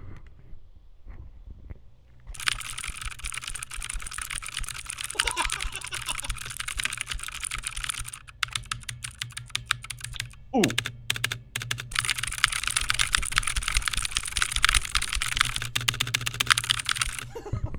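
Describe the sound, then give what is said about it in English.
Rapid, clicky typing on a mechanical keyboard with MX Blue switches, loud, in fast continuous bursts for about fifteen seconds, with a short stutter partway through. “I have a mechanical keyboard with MX Blues. Listen.”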